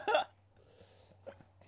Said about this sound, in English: was pretending to like clear his throat